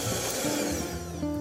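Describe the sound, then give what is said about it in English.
An electric mixer beats a thick, pale egg yolk and sugar mixture with zest mixed in, to integrate the ingredients until smooth and homogeneous, giving a steady, buzzing motor whir with a humming tone that shifts pitch slightly partway through. No voices. “I'm going to make a little bit of noise again and beat this, but I'm really at this point beating it just to integrate all the ingredients until they're smooth and homogeneous.”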